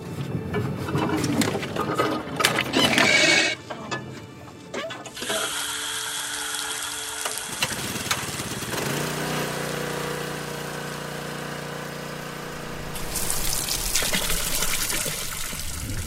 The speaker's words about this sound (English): They smell the water, taste it, then they run a hose from their truck to the barrel, fire up a generator, and begin refilling.